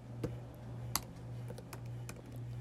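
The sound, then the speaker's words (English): Someone types on a computer keyboard, a sparse, irregular patter of sharp key clicks layered over a steady low electrical hum, with no talking. “Typing right now.”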